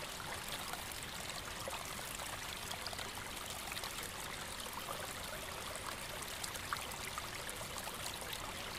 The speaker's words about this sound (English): The little stream in front of the log trickles and bubbles away, creating a little percussive sound, so delicate it is almost musical in tonality.